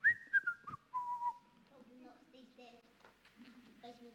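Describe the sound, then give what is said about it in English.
A man whistles a short, bright melody as he works, with a few sustained and gliding notes, followed by lower hummed or voiced tones, as if briefly carrying a tune. “And he whistles as he works.”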